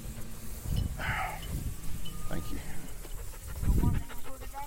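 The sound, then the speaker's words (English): Several short bird calls ring out outdoors in the afternoon while hunters scout for dove, over a steady wash of background noise and low thumps, with a squawky burst early on and chirpy calls near the end. “We hearing birds, and he's sweeping the place.”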